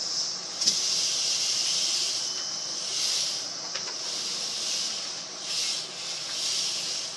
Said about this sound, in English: Then there are seeds and a wish for rain. And then it rains.